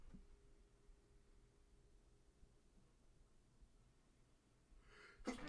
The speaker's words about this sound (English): And I went through the whole sneeze.